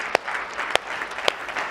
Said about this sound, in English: And in the middle of the message, yeah, give God a hand clap. Come on.